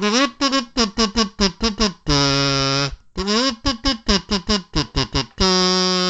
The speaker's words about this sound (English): Whether or not you're musically inclined, you've probably seen this strange-looking instrument that makes a funny sound when you hum a simple tune into it, and it comes out sounding something like this.